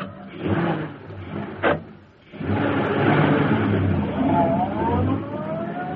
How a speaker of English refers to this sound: As Bleeker's car swung into the street and turned toward Schaefer's parking lot, a huge sleek black car started along behind them.